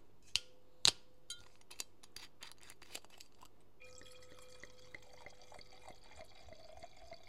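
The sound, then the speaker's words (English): A bottle of 2018 Australian Lendemain's Chardonnay by David Blumez, 13.5% alcohol, is cracked open with a couple of sharp snaps and a run of lighter ticks. Then the wine pours into a glass in a steady, bubbling stream for several seconds. No one speaks. “For SMR sakes, let's crack it open.”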